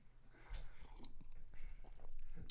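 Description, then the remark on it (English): Someone takes a quick, quiet sip of coffee on a Monday morning, with soft slurping and mouth noises, a swallow, and a faint click at the end. No one speaks. “Quick sip of coffee.”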